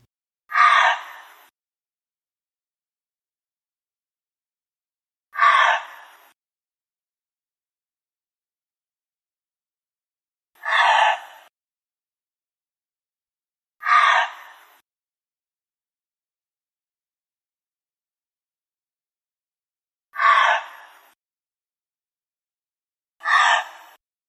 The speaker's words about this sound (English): Let's listen to the call of the gray fox next.